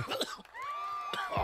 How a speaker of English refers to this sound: Oh, yeah, homie. That ain't a COVID cough. That just be a weed cough, yo. That's a bong cough. That's a bong cough, homies.